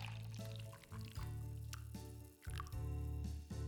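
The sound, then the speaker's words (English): Coffee poured into cups, two steady pours one after another, each a gurgling stream with a resonant ring as the cup fills, with a few small drips and clinks between them. “The Overseer poured them both a cup of coffee before starting.”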